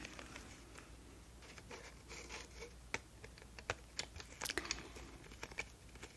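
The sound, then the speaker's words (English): Ten colored pencils being handled, with soft irregular clicks, taps and light scraping as they knock together, growing a bit busier toward the end. No one speaks. “So, I've got these 10 colored pencils for you.”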